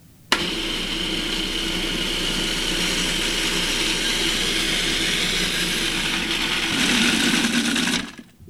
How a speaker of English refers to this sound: Next, we'll add the 3 cups of loosely packed basil leaves and the olive oil. And the olive oil I'm just going to pour into the top of the food processor while it's processing.